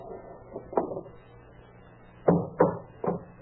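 Someone strikes a wooden door with a hammer to take it off its hinges: a few sharp, knocking blows land at irregular intervals over a low background rumble with no talking.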